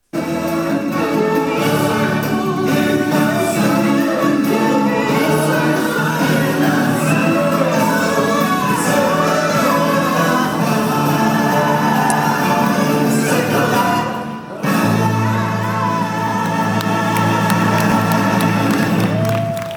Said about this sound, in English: That's me clapping in the background.